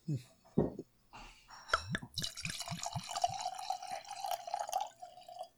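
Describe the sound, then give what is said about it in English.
Sake from a freshly opened bottle is poured into a glass: a few quick, rising glugs give way to a steady, splashing stream with a ringing tone that carries on for several seconds before tapering off. “And into the glass.”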